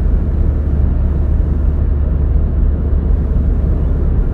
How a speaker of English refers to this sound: I'm in the car this morning.